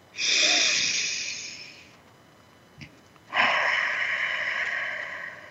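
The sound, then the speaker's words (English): Two long, airy deep belly breaths, each lasting a couple of seconds with a short quiet pause between them, slow exhales blown out through the mouth as if through a straw. No one speaks. “And then breathe out through your mouth like through a straw. Let's just take a couple more belly breaths like that.”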